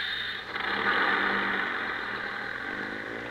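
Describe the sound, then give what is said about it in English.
A bus engine runs steadily with a low rumble and a rattling, clattering texture as the bus drives off from Beverly Hills toward Santa Monica. It swells slightly early on, then holds a constant drone, with no voices. “And now, ladies and gentlemen, we leave Beverly Hills and drive out to Santa Monica.”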